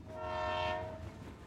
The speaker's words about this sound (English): You can hear the relaxing sounds of the wheels turning along the tracks. The station bells get louder as your wagon passes by this small station in the middle of nowhere.